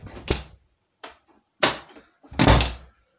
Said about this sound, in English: Good, right, we're out. Let's close the door.